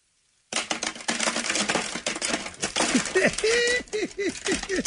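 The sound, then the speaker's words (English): A long cascade of about 50 pens, some of them chewed up, clattering onto a tray, dense rattling and clicking for several seconds, fairly loud, with faint voices murmuring underneath. “I have a tray here. I want you guys to hear how many pens. All right, go ahead and put them down.”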